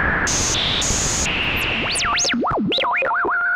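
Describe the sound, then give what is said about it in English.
Warbling synthesizer tones sweep up and down in wobbly glides over a constant hiss of static, after a few stepped high beeps, like an eerie detuned radio signal: a radio-wave effect made on a Moog Concertmate MG1, a small synth made by Moog and sold at Radio Shack. “All the sounds you just heard were made with a Moog Concertmate MG1.”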